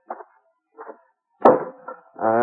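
An axe splitting a pile of kindling near a barn: two soft, dull knocks, then one sharp, loud chop with a short ringing tail, followed by a brief voiced sound like a startled gasp.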